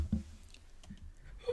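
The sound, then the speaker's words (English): A few soft clicks and clacks as three dice tumble and rattle briefly, quiet, with low thumps in between and no talking. “Roll these dice for me.”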